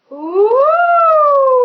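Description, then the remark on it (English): A single sustained voice, done as a head-voice singing exercise, glides upward in pitch, then slowly sinks, imitating a siren or ghostly wail with a smooth, hollow tone and no words. “All right, head voice, everyone just start making ghost noises and sirens.”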